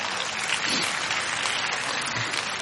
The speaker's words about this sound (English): Can we give ourselves a round of applause?